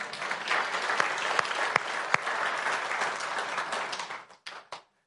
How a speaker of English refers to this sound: Yeah, we're going to applaud on that one. Come on.